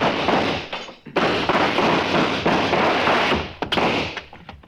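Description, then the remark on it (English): A loud, chaotic burst of gunfire in a shootout: sharp cracks fire rapidly and overlap into a dense, rattling barrage for several seconds, with a few especially hard shots standing out. No one speaks. “No, he'll shoot!”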